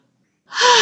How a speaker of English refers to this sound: The breathing, three deep sighing breaths, okay, breathing in through the nose.